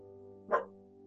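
A single short dog bark pops out sharply in the middle, fairly loud, over a steady low electrical hum that runs throughout.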